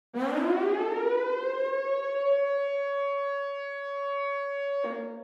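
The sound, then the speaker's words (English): A harsh warning siren in a love song rises from a low growl to a steady, piercing wail, holding loud for several seconds before abruptly dropping off at the end. No voices are present. “We also hear a pretty abrasive siren, a warning signal, something certainly out of place in a traditional love song.”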